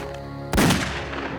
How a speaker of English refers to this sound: Abisalov fired a single shot that struck Sidney in the back.